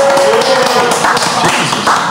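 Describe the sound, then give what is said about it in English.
Rapid hand clapping fills about two seconds, a dense stream of sharp, overlapping claps at a steady loud level, with no talking over it. “We should clap for that.”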